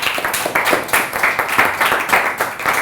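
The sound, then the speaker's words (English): A crowd claps steadily for a few seconds, many hands overlapping into a dense, fairly loud patter of applause with no voices standing out. “Everyone clap for him, clap for him.”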